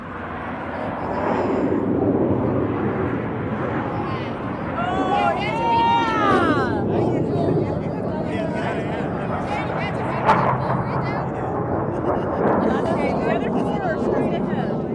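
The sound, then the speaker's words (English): A fast jet flying at several hundred miles per hour screeches overhead, its roar rising and sweeping down in pitch as it passes, over a continuous loud rumble with a crowd murmuring in the background. “So they're flying at a pretty good clip, several hundred miles per hour. You hear them screeching over.”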